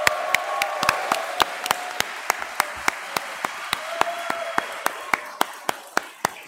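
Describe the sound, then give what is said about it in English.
A round of applause for the show's researcher: sharp, evenly spaced claps at a steady pace of roughly four per second, continuing for several seconds over a faint murmur of background voices. “I just want to give a round of applause for all the work she's put into the show so far.”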